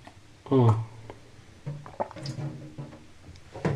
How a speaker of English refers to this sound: I haven't done dishes yet, so I'm drinking water out of a bowl. I feel like a dog.